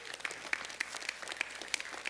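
A church audience at Door Creek claps steadily, a dense wash of applause with brighter individual claps popping out every fraction of a second, moderately loud and continuous with no talking.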